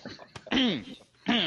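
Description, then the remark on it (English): Two loud, harsh coughs, each a raspy voiced burst, separated by a brief pause, with faint breathy sounds before the first. “I cough really loudly as I notice that I have a really, you know, I have all these pock marks on my left arm.”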